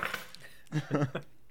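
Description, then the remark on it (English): Keys clatter briefly onto a table with a bright metallic jingle at the start, followed by a few short, low murmuring voice sounds. “Why did you put your keys down on the table? It's like the loudest shit you could have done.”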